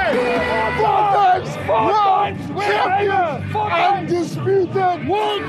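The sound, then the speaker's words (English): A large, colourful crowd celebrating the Rugby World Cup championship cheers exuberantly, many voices shouting, whooping and bellowing over one another in a loud, continuous, excited roar with rising and falling pitched calls. “It's impossible not to get swept up by the exuberance of the colourful crowd.”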